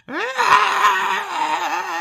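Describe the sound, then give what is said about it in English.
A single distant, drawn-out, animal-like scream from somewhere in the caverns that rises sharply, then wavers and holds for about two seconds. It is a strained, wailing cry heard alone, with no talking. “from somewhere in the caverns, you hear a distant animal-like screaming.”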